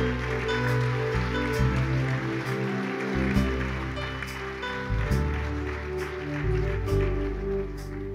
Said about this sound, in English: Let's give all those wonderful people a big hand clap.